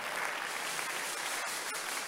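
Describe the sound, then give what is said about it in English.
A church crowd claps for Jesus together in a dense, continuous wash of applause, individual claps blurring into a steady hiss that holds an even loudness throughout, with no voices standing out. “Because some of you are like, yeah, oh yeah, it's a good place to clap for Jesus and clap for yourself.”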